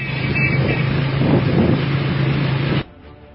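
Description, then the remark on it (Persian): Over 30 anti-riot vehicles drive along the main road in the town of Masjed Soleyman toward Bazaar No. 1 in a steady rumble with a low engine hum, wind buffeting the microphone, then the noise cuts off abruptly near the end. “ببین چقدر ماشین اومد برای مسجد سلیمان، شهر اولینا.”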